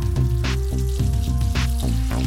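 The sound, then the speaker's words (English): Tap water runs into a kitchen sink to flush out centipedes, with a steady tonal hum from the pipes, broken by a few brief hissing splashes, fairly loud, with no one talking. “I'm gonna start running some water and see if that flushes them out.”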